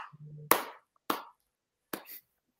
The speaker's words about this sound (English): Oh, wait. Can we just do a quick round of applause? If your team won, let's do that. Yeah, if your team won this week and collected 3 points.